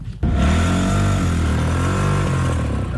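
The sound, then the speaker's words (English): A car engine starts up suddenly and runs loud for about three seconds, its steady growl rising and dipping slightly as it revs, with no voices. The car has five gears and a separate reverse gear lever. “This car has 5 gears, just like the cars that you are used to.”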